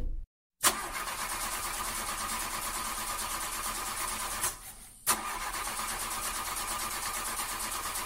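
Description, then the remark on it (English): A Lamborghini car engine cranks loudly without catching, a steady grinding churn that stops briefly midway and then starts cranking again, with no voices. “Okay, well, it's not starting.”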